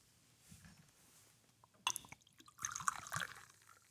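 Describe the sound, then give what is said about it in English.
Beer poured from a bottle into a clean glass: after a quiet start, a sharp splashy gush breaks in, then a longer bubbling, glugging stream of liquid. No voices. “Okay, we're getting a couple bottles open here. And get a clean glass.”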